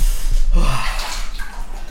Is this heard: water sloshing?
yes